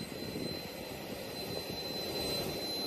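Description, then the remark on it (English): A business jet's engine runs steadily as former Clayton County Sheriff Victor Hill approaches the jet: a constant low roar with a thin high-pitched whine above it, holding the same level throughout with no voices. “It shows him approaching a business jet, briefcase in his left hand, and holding a cell phone to his ear with his right.”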